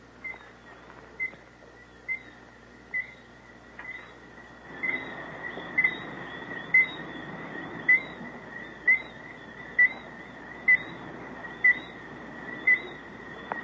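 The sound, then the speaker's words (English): Birds calling at night in Grenada, in the Spice Islands of the West Indies: a steady series of short, high chirps repeating about once a second, over a continuous hiss of background night noise that grows fuller partway through. No one speaks. “I'll give you one last listen to these birds.”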